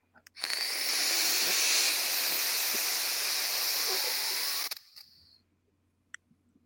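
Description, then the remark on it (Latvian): A steady, loud breathy hiss of vapor being exhaled from a vape device, lasting about four seconds, then cutting off with a faint trailing wisp and a couple of small clicks. “Iedomājies, cik smags dūms viņš šitien te tas tvaiks, ja, ka viņš nemaz neceļās augšā, viņš jau nosēžās zemē,”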